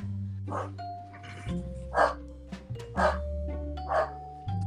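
A corgi barks in a steady series of sharp, mid-pitched woofs about once a second, over a low, sustained electronic hum in the background.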